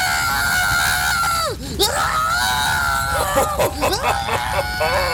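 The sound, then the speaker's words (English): Loud, high-pitched screaming fills the whole stretch, sustained wails that waver and swoop down in pitch before rising again, continuous with no speech. “I love it when they scream!”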